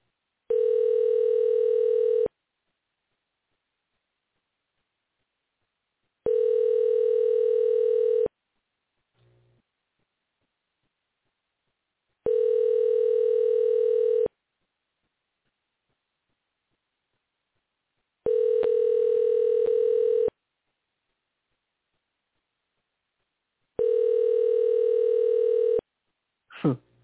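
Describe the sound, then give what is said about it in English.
A phone line's ringback tone repeats five times, each steady two-second buzz followed by about four seconds of silence, clear and evenly spaced with no one answering or speaking. “Or maybe I'll try her cell.”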